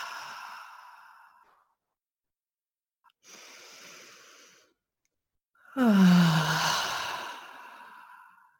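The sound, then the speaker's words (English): Slow, deep breathing, in through the nose and out through the mouth: a soft breath, a quieter inhale after a pause, then a long, louder exhale that turns into an audible sigh. No talking. “And breathe deeply in through the nose and out through the mouth.”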